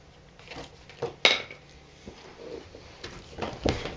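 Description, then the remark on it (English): Dice rolled for an acrobatics check in a tabletop role-playing game clatter across a hard surface: one sharp, bright impact followed by scattered lighter ticks and rattles, then another crisp click near the end. No one speaks. “I'm going to reroll. These dice normally I'll get hate me.”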